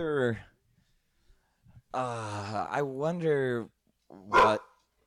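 A dog barks, with a short bark at the start, a longer drawn-out bout of barking in the middle and one sharp bark near the end, with quiet gaps between.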